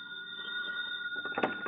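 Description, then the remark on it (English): A steady, buzzing telephone ring sounds fairly loud, followed near the end by a brief clattering rustle, like a handset being lifted. It is an FBI agent's call coming in to the agent in charge of the San Francisco FBI Bureau. “And to add insult to injury, while it fretted over its watching and waiting, one of the FBI agents had reason to phone in to the agent in charge of the San Francisco Bureau.”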